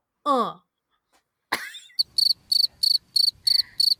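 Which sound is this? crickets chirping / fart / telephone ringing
crickets chirping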